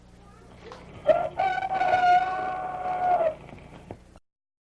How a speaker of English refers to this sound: here comes a very important message for you from our good friend, Mickey the Rooster